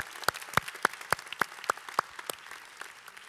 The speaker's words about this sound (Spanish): Es más, ¿por qué no les damos un fuerte aplauso por el trabajo que ellos hicieron?